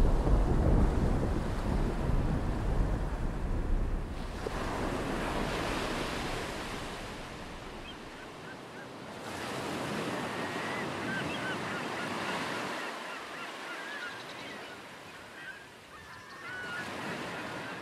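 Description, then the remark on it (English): Ocean waves on a calm sea roll in and draw back in slow, steady surges, a soft continuous wash with low rumble and some wind noise; no one speaks. “The sea was calm, and all was as if our ordeal had been no more than a dream.”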